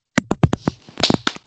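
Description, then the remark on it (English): A short burst of hand clapping, about a dozen sharp, irregular claps from a few people, loud and bright, with no voices. “Clap it up, folks.”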